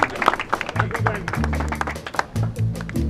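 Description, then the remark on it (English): A crowd applauds with dense, steady clapping for about three seconds, over a low droning background and some murmuring voices. “Now give it up for these lovely people.”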